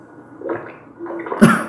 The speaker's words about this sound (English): Oh, that's a fart. Somebody wet farting. Hold on, just listen.